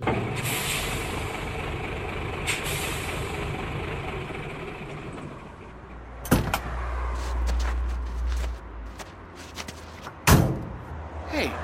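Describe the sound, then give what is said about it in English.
A truck idles with a low rumble while two people climb out, rustling and shuffling, and two sharp, loud door slams ring out a few seconds apart. “Get out of the truck, both of you. Now!”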